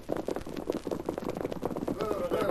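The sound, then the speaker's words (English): Quick, overlapping clip-clop of more than one horse's hooves on hard ground outside a ranch house, a steady busy patter at moderate volume that grows slightly louder toward the end as the horses draw near. “horses outside, Paul.”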